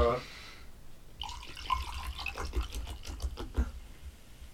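Water sprays from a tap in a steady, hissing rush with irregular splashy spurts, starting after a brief vocal sound and continuing at moderate loudness.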